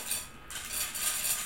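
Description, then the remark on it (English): Gus, a cat, eats from his feeder bowl: faint, steady crunching and light clinking of kibble against the dish, a hissy, bright texture that continues for a moment with no voices. “That's Gus's feeder. Gus is Gabby's cat.”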